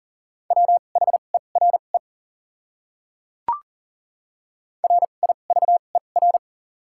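Rapid Morse code beeps at 40 words per minute with double character spacing, in a steady mid-pitched tone, short dots and longer dashes sent in two bursts, separated by a silent gap broken by a single brief click.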